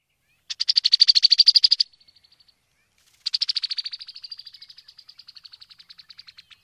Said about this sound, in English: Brown-headed cowbird.